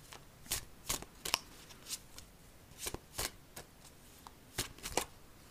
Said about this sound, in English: But let me go ahead and shuffle the cards and see what they have to say today.